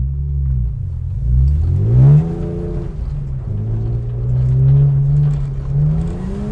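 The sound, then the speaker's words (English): A car engine revs hard, its pitch climbing sharply then settling into a steady, throaty drone that swells again, as the car is driven sideways on ice on purpose. “driving cars on the ice on purpose”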